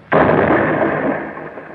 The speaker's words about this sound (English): The door's blown clean off.